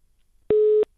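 A single steady electronic telephone tone sounds for about a third of a second, clear, with near silence before and after. It is the signal of a caller's phone line being cut off during a radio call-in programme.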